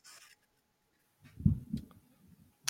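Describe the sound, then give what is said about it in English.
A muffled sneeze: a quick pair of heavy, low bursts with a brief hissy edge, then a short tail of rustle and a sharp click. “Bless you, by the way.”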